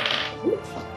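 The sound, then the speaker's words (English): Several dice rattle and tumble across a hard surface in a brief, dense clatter of sharp clicks, with a slightly louder knock midway, lasting about a second. “How many dice is he rolling? I can't see. I don't like this. Sounds like a few.”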